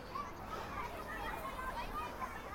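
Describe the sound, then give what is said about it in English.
A busy schoolyard hubbub of many children's voices chattering and calling out at once, a steady, dense babble with no single voice standing out, holding an even loudness throughout. “Listen to these beautiful little voices.”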